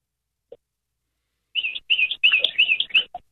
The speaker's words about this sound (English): Oh, it's a bird.